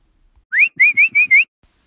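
A person whistles a short, bright tune of five quick notes, the first sliding upward and the rest evenly spaced, clear with quiet around it.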